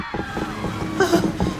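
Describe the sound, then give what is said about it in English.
Water sloshes and gurgles in a steady churning wash, with a brief swell of bubbling near the end, as a boat taking on water through a bullet hole below the waterline sinks at a dock. “Look, everyone made it off the boat before it sank.”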